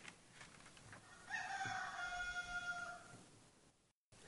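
A rooster crows once, a loud, drawn-out cock-a-doodle-doo lasting about a second and a half, rising clearly above a quiet outdoor background before fading away.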